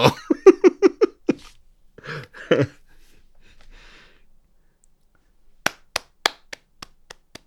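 A short run of rhythmic, laugh-like vocal bursts and a breathy sigh, then quiet, then a slow, sparse golf clap of about seven crisp claps that taper off.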